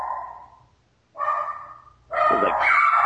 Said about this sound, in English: Is that a dog? Yeah, those are my, yeah, I'm sorry about that. Those are my. My brats in the background, and my neighbor is a freaking idiot, and they walk their dog out in front of our door every single day, and it's like, just stay in your yard.